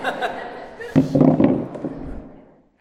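A few more chairs clatter and thump as they are shifted and set down, a burst of knocks and scrapes in the middle that trails off into murmur.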